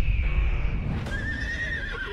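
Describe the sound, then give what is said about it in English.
A horse whinnies loudly, a strained, wavering neigh lasting a couple of seconds over a low rumbling background, with no talking. “something very wrong with that horse.”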